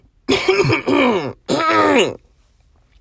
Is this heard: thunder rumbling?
no